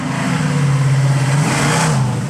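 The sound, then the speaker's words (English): A car engine revs steadily outdoors, a loud, sustained low growl with a rising and falling pitch, no voices over it. “Got the car sounds in the background.”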